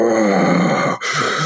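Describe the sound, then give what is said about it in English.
A voice imitates heavy, menacing animal breathing: a long, loud, rasping exhale, a brief pause, then another breath, alone. “And just this big intimidating breathing, you know, and breathing can be intimidating because you can get some sense of the size of the animal doing it when they do it.”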